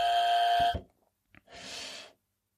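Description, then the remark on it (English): A loud, harsh electronic buzzer blares for under a second and cuts off abruptly as it is pressed to cut off someone singing, followed after a brief pause by a click and a short burst of hissing noise. “Don't buzz me off.”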